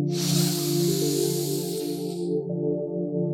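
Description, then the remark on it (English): A long, airy inhale, taken as the first step of a mantra breathing exercise, drawn in steadily for about two seconds, then fading out, while a steady low humming drone continues underneath throughout. “So what we're going to do is that we are simply going to breathe in.”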